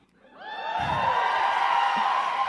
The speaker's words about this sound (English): Then I tasted that sweet, sweet applause.